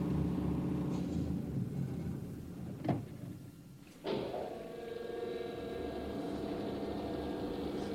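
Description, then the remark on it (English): A low, throbbing boat engine rumbles steadily, then winds down and fades after a brief clank as the engines are stopped on a signal. A sharp knock follows, and a steady mechanical hum carries on to the end. “They gave him a signal, and he told me to stop the engines.”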